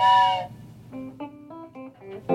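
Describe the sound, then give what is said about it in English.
A loud, brassy train whistle blasts for about half a second, followed by a run of shorter, quieter tonal hoots and notes of varying pitch. “Was the train whistle.”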